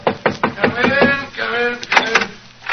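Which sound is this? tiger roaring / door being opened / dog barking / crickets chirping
door being opened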